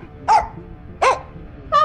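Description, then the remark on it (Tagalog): A dog suddenly stands up, stares and barks three times in sharp, evenly spaced, loud bursts, with a faint low background hum between them and no talking. “Tapos, kung saan ko banda narinig yung bulong na yun, doon din biglang napatayo yung aso namin at nakatingin siya at bigla siyang tumahol.”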